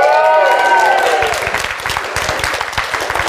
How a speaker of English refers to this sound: First of which is the Pumpkin Palooza. Everybody cheer.